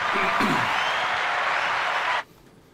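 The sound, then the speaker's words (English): A dense, steady burst of applause-like clapping fills about two seconds at a constant loud level, then cuts off abruptly into near silence. “We have a round of applause for.”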